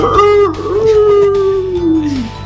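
A single long wolf howl rises, holds a steady wavering tone, then slides downward and fades out, loud, with no talking over it.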